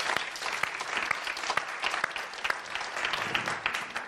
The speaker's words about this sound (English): Please, a maybe even bigger, let's build up, round of applause for the chairholder of biochemistry here at De Wurp